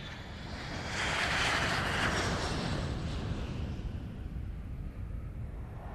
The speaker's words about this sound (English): It is now the end of April, and as I sit in the plane looking through the in-flight magazine, I can't stop thinking about the godwits.